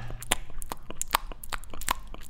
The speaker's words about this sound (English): When I remember a few years ago, this idea of misophonia went lightly viral. Everyone was talking about, oh, you know that horrible feeling when someone's chewing right next to your ear?